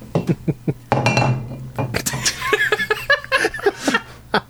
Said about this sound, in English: You're good at knocking that bottle over. That's right. I like to think that it's the same bottle every time, too.